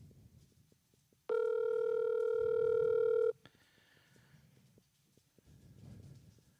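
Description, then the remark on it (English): A single loud, steady telephone ringback tone from an outgoing phone call lasts about two seconds, then cuts off, leaving faint background rustling and low rumble; no one speaks. “I'm going to give him an impromptu call, and I'm going to ask him about this. Make sure he knows he's on the podcast. Oh, well. It's ringing.”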